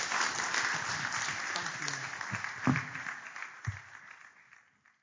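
A crowd applauds with dense, steady clapping that thins out and fades over the final second or so, with a few sharper individual claps standing out near the end.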